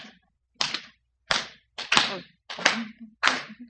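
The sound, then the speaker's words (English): Six sharp hand claps land at a steady, unhurried pace, each a crisp, bright smack with a short ringing tail and silence in between. No one speaks. “So just a nice clap.”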